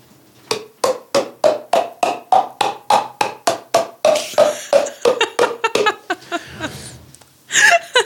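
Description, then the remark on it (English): A quick, steady run of hollow pops made by clapping the hands together so the clap forces air into the mouth, with the mouth controlling the pitch. About twenty pops in a row, their pitch shifting up and down like a tune, fairly loud, ending in a brief breathy noise. “I can make pitched popping sounds with my hands and mouth where I clap my hands together and the clap forces air into my mouth and then what I do with my mouth controls the pitch.”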